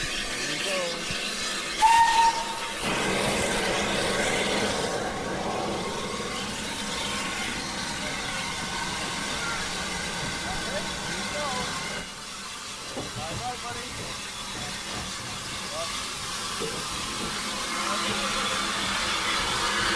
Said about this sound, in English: Signal's just dropped, and the locomotive is now on its route back down to Alsford. Doesn't have to work hard on the way down, because it is downhill all the way